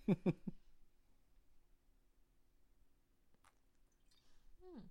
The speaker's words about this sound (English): Oh, God. I feel like a pirate drinking out of a bottle like that.